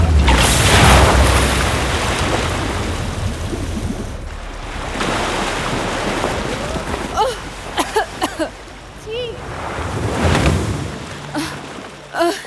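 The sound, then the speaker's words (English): A lightning strike booms and crackles loudly at the start, followed by two more rushing, rumbling bursts, with brief voices and laughter breaking in between them. “I didn't mean for the lightning to hit you so hard.”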